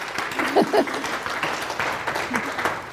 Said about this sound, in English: Round of applause, quick. Go.